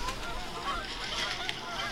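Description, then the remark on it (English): Geese honk repeatedly outdoors, a cluster of overlapping nasal calls, fairly quiet against a steady low background rumble. “How many geese are there?”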